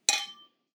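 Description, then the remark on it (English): A single bright clink of glasses touching in a toast, with a short ringing tone that fades within half a second. No voices are heard. “So cheers to Nelson.”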